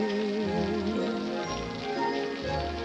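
rain falling

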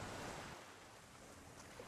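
ocean waves

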